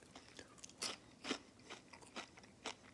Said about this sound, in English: And then you bite into it and there's a crunch, but then it's such an airy little thing that you just like, you just want to keep back going for more.